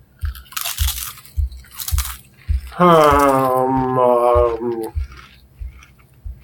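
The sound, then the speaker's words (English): Loud, crisp crunches of Wavy Lay's potato chips being bitten, three or four sharp bursts, followed by a long hummed vocal sound while steady rhythmic chewing continues underneath. “Here is a chip, and okay, yeah. Yeah, and I'm going to choose one of these here. These are Wavy Lays of some kind.”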